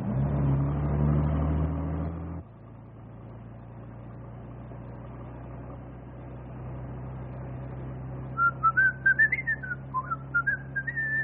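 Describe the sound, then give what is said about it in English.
A person whistles a short, wavering tune over the steady low hum of an idling engine, which follows a louder rumble that cuts off early. No one speaks. “you have the whistle? Yep. Keeps my mouth shut while I'm a-thinking with my head.”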